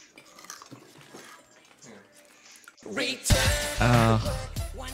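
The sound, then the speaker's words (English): Soft, crunchy biting and chewing sounds as a man eats something for a few seconds, followed by a loud voice speaking over the end. “He eats something with a crunch and then he asks for mustard.”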